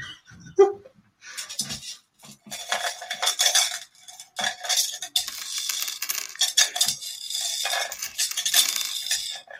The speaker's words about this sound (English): Oh, there's some more coins. Lovely. How much are they worth, I wonder? I can't add it up.